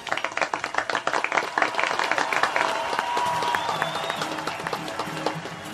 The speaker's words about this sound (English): Ladies and gentlemen, please welcome the blah, blah, blah symphony. Everyone's applauding in the room. We'll feather it in.